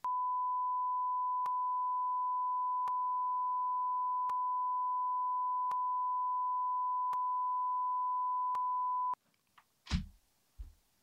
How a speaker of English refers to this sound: Beep this